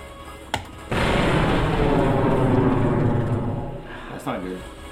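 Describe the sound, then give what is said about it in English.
A sharp crack is followed by a loud, roaring explosion sound effect for a high-explosive grenade that rumbles for about three seconds before fading, and a voice speaks briefly near the end. “That was a big explosion.”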